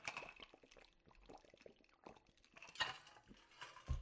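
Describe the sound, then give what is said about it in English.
Someone drinks water, with small wet mouth clicks and swallowing sounds, a louder gulp or slurp partway through, and a soft thud at the end. No one speaks. “Pause, I have to drink some water.”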